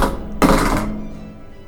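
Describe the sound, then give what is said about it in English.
Two dice are rolled onto a hard surface to set a character's strength and dexterity in a D&D game, landing on a 9 and a 12: a brief rattle, then a louder clattering knock as they land and quickly settle into quiet, with no voices. “Go ahead and just roll two dice.”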